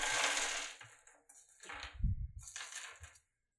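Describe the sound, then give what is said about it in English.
Plastic dice from a bought pound of dice clatter and rattle in a few bursts as they're shuffled and sorted to pick out d4s for a roll, moderately loud with clicking, crunchy textures and brief pauses between handfuls. “You know, they don't give me many d4s in this pound of dice I bought.”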